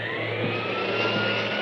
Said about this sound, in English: I can't hear you over the vacuum.